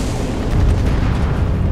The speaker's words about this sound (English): The destroyer Kasumi took a torpedo to the stern, blasting away her steering, yet she still plowed on, zombie-like, through the water.